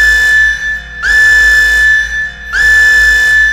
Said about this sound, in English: Blame the proximity alarm. Proximity alarm? We've got incoming.